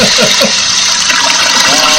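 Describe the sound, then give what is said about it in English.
A loud toilet flush roars, a steady rush of churning water filling the whole two seconds with no pauses and no voices over it. “flush you down the toilet.”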